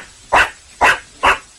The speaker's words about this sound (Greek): Σουρικάτα, σουρικάτα.